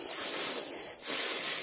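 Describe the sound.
A voice imitates a cat's hiss: two sharp, breathy hisses, the first fading briefly before the second comes back louder. No one speaks.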